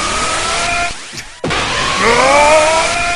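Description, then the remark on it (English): A voice imitates the powering-up yell of Colossus from the X-Men arcade beat-em-up: a loud, strained tone that rises in pitch, cuts out briefly, then surges back with another climbing, sustained cry. “Since you mentioned X-Men, the arcade beat-em-up, I did see a sign apparently from MagFest over the weekend saying that apparently so many people were doing the Colossus yell. Sounds like...”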